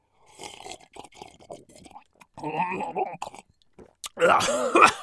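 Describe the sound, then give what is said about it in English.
A person gurgles water from a cup in their mouth to mimic a clogged drain pipe, a wet, bubbling rattle in a few bursts, ending with a loud sputtering cough. “Let me try to reenact it with my cup of water.”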